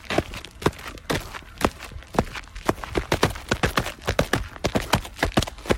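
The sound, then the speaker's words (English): Rapid, uneven clip-clop sounds, like horse hooves trotting, made by hand as an imitation rather than a real horse. Dozens of sharp knocks run continuously, with no talking. “That was my bad imitation of a horse.”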